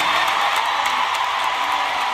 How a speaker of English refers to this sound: …, a British native, led a round of applause by the 20,000 fans who packed the garden.